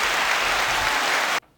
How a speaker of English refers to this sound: Give me some applause. Yeah, there you go.